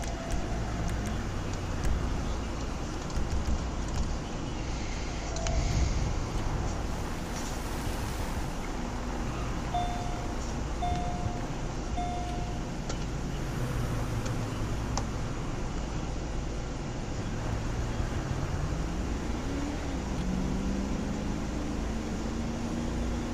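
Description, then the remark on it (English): A Corvette sports car engine drones steadily while driving, a low continuous rumble that climbs in pitch toward the end as it revs up. No one speaks. “Oh, so I'm in the Corvette, so I'm sorry if I'm driving like an idiot.”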